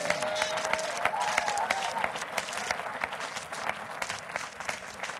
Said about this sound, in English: Well, let's give the Lord a mighty hand of applause. Amen.